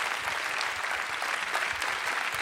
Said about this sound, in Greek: Θα ξαναπώ ένα χειροκρότημα, παρακαλώ, για τους μοναδικούς αυτούς μουσικούς.